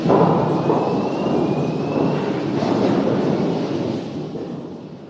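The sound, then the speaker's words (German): A deep, continuous rumbling roar with dense thudding and knocking as roughly 2-metre tree-trunk pieces tumble and crash against each other inside a huge rotating debarking drum at a factory in Weisenbach, loud, easing slightly toward the end. “Immer wieder prallen die Baumstämme gegeneinander, während sie wie in einer überdimensionalen Waschmaschine herumgewirbelt werden.”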